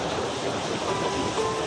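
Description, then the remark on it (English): A steady, broad wash of ocean surf on Martha's Vineyard rolls along at moderate volume, a continuous roar of waves with no distinct individual breaks and no voices. “Now they keep him alive in their hearts with a memorial bench that overlooks the ocean.”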